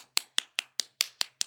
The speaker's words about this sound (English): Clapping.